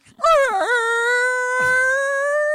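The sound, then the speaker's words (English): A voice imitates a whale's moaning call: one long, loud wail that dips and swoops early, then holds a steady, high, tonal note for a couple of seconds. “like if a whale were to orgasm, that's what it sounded”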